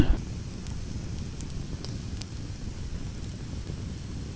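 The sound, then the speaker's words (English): A campfire being stoked crackles steadily, with a few sharp pops scattered over a low, rushing rumble like wind or flames roaring; no one speaks. “We're going to go refill our glasses, get this fire stoked, yeah, yeah, yeah.”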